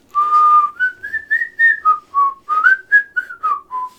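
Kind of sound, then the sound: human body sound, person whistling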